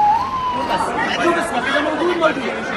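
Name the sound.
ambulance sirens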